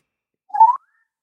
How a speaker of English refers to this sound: It is a backwards whistle with some sort of vibration, some sort of tremolo, maybe? Yes. It's very It's an easy. Ascending backwards whistle with vibrato. It's like, it sort of reminds me of, say, if a bird was going down a water slide